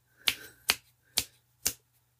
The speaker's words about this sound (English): Okay, apparently I can't snap my fingers quick enough, but snap me. I can't do it.